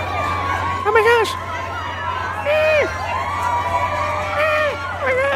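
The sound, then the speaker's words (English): A crowd cheers steadily, a dense wash of many voices with scattered high whoops and shouts rising and falling over a constant low hum, loud throughout with no pauses. “92% of my audience is women, but look at the reaction from this crowd.”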